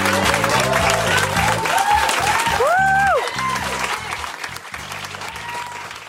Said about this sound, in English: That was some of the most enthusiastic applause of the night. I want to know, how did that make you feel?